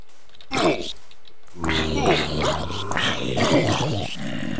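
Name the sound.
dog barking and whimpering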